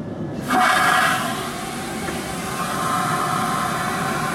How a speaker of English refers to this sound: Oh, and thanks to this airplane for taking me places. Here's a real-life flush.